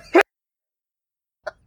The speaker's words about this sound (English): I literally think I sucked up a thing of tobacco into my nose. You just find a new ways to intake tobacco. Look, I take snuff regularly. This is really up my nose. I'm about to sneeze.